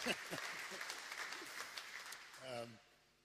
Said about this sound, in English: Can we just give him a clap? I know he doesn't like this. Sorry.